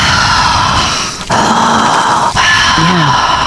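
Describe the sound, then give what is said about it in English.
A voice imitates deep, heavy breathing: three long, loud, raspy breaths in a row, each separated by a brief catch, with a gravelly, almost growling texture. “I stood there listening to the steps, and I could hear deep, heavy breaths.”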